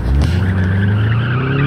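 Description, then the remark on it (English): A car engine roars loudly under hard acceleration as the driver pushes the gas pedal to the floor, its pitch climbing steadily while tires squeal over the top, intense for under two seconds with no talking. “My foot pushed the gas pedal into the floor of my car as I tried to get past as many of them as possible.”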